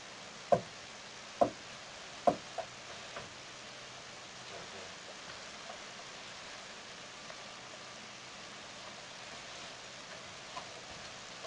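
Three sharp knocks made by a person on a wooden bench where letters are laid out, evenly spaced, followed by a couple of fainter taps, then a steady low hiss with no voices.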